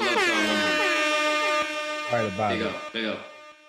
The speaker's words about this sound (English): Before we get there, let's get some air horns for Women's Month, please. A few air horns.